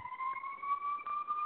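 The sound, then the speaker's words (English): A passing emergency vehicle siren holds a steady, high, slowly rising wail for the whole moment, fairly loud and continuous, with no voices over it. “The sirens are going.”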